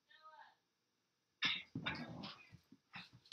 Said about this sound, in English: I got fighting dogs over here. Go in the other room.